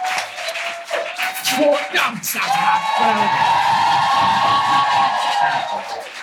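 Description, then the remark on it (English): A crowd applauds and cheers loudly, with steady clapping, whoops and shouts filling the whole stretch. “Give everyone a round of applause.”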